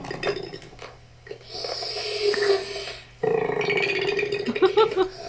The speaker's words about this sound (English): But here's a video of a koala burp.